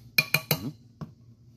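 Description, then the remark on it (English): Fresh ice clinks against a glass while a whiskey drink is made: three quick, bright, ringing clinks in a row, then a softer single clink a moment later. No one speaks. “Change the ice. Make sure we're pouring it over fresh ice.”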